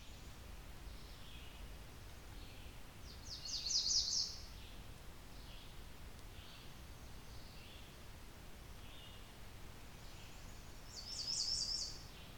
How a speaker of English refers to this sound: A few times in these soundscapes it might even sound like the redstart is mimicking other warbler species. But do be aware, some of these recordings actually do contain other warbler species.